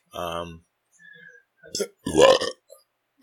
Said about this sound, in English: Another burp for you.